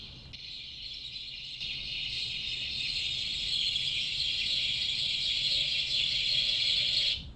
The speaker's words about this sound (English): it's one of my favorite sound design moments in the whole movie, is like the increase of volume of the birds right as they show the one piece of moving footage. It's brilliant.